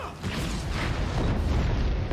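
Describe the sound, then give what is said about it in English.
Loud, continuous explosions rumble with a deep, booming roar and crackling noise, sustained throughout with no clear pause between blasts. “The explosions.”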